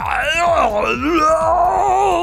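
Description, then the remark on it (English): A person voices the grotesque scream of a monster whose jaw extends and dislocates like a snake's, a loud, sustained, guttural wail with warbling, bending pitch that carries on for a couple of seconds without pause. “And it opens up in like this grotesque scream.”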